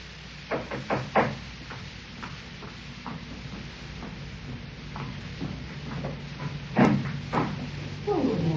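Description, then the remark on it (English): A postman knocks at the front door: a quick run of sharp raps, then quiet room noise, then another pair of knocks a few seconds later, moderately loud. “Next morning, I was having breakfast when I heard the postman knock at the door.”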